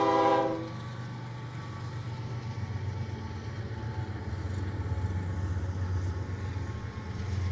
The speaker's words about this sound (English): Don't even have to worry about the train passing by when I'm trying to preach, because God's got that too.